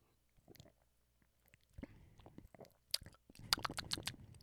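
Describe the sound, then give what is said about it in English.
Quiet mouth sounds of someone sipping a strong 7.8% beer: soft wet slurps and little clicks that build to a brief cluster of louder smacks and a swallow, with no talking. “Let me take a little sip, and I'll tell you how it tastes.”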